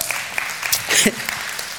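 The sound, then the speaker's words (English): An audience applauds in a short burst of dense, steady clapping during a morning sermon, with a brief cheer or voice rising through it about midway before the applause carries on at an even level. “Yes, we got applause for that one.”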